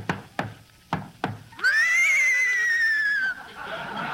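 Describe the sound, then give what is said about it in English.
A horse, one of Crosby's horses ridden into the studio by Dorothy Lamour, neighs loudly: a long, quavering whinny of nearly two seconds, preceded by four sharp hoof clops on a hard floor, with no one talking. “Somebody riding into the studio on a horse.”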